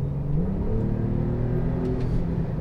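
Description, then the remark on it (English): A Porsche Carrera 4S's turbocharged 3-litre flat-six engine revs steadily through a sports exhaust, its deep rumbling drone rising slightly in pitch, loud throughout with no voices. “The big controversy about this, of course, is the engine, down to 3 litres, turbocharged in this car, but still an evocative note from the sports exhaust and the flat six.”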